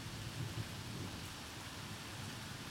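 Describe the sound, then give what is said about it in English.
Steady, dense rainfall hisses evenly throughout, with a low rumbling undertone beneath the patter and no voices. “I think that wraps up this rainy, noisy, another terrible sound episode.”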